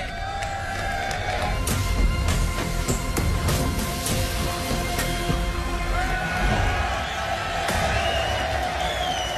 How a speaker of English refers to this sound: Crowd excited, get the first look at the car, the black and red. It's just a big party. It is. Ferrari 2023 Formula One Championship contender, Carlos Charles.